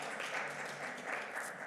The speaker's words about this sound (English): You can clap your hands for the Word of God.